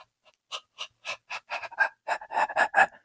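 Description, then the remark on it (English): A voice imitates a dog panting: quick, breathy huffs, about a dozen, speeding up and growing louder toward the end, alone with no talking. “So, like, if, say, you're sitting in your living room, you can hear the dog panting, like, from a while away.”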